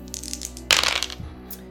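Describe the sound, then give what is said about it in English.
Dice clatter across a hard surface in a short burst of rattling clicks, with a couple of lighter taps as they settle, rolled for a spot hidden check and landing a 12. No voices are heard. “So I rolled a 12, so that will be an extreme success.”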